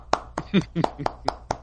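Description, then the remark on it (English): Rapid, steady hand clapping, about seven sharp claps at an even quick pace, done as an impression of Jason Garrett clapping on the sidelines, with a brief voice murmuring between a few of them. “He just sits there and claps on the sidelines no matter what, right?”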